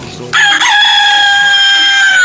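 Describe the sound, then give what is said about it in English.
A rooster crows loudly, one long sustained cock-a-doodle-doo that starts abruptly and holds a bright, strained tone to the end. “That's a bird.”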